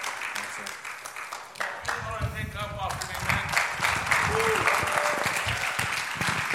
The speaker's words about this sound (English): Come on, good job. Come on, give him a great clap offering.